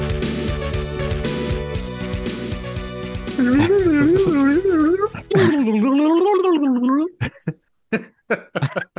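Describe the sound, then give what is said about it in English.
After a short burst of music, a voice warbles up and down in a rapid wavering whoop, mimicking a turkey's gobble, then breaks into a few short, choppy vocal bursts. “That was just my turkey call.”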